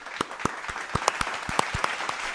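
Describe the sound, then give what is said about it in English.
A small audience applauds, with sharp claps standing out above a steady bed of clapping. The applause is fairly close and moderately loud, with no talking over it. “Firstly, let's clap at the end of the episode.”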